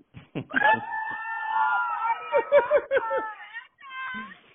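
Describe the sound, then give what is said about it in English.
A group of girls on a boat on the Lake of the Ozarks yells and screams loudly together in a sustained, high-pitched burst, followed by a few shorter shrieks and a final brief yell. “Girls, you guys got to yell as loud as you can.”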